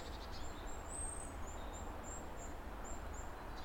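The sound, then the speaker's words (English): Thin, very high-pitched goldcrest peeps repeat in a quick, irregular series, faint, from high up in the trees, over a steady low outdoor rumble. “Just trying to catch up with some little wrens and little peeping birds high up in the trees, which feel a bit gold-cresty.”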